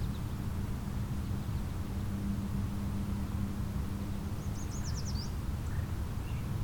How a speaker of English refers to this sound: Very clear song. Bird's right in front of me somewhere. I think a bright yellow bird would be obvious.